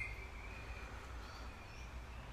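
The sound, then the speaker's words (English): Faint birdsong drifts over a steady, soft hiss of gentle rain, with a low rumble underneath and no voices. “Oh, I love the birds and the gentle rain.”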